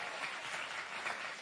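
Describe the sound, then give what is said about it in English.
A crowd applauds steadily, a dense wash of many hands clapping at an even, sustained level with no voices over it, thanking a guest teacher. “Can you guys thank Scott so much?”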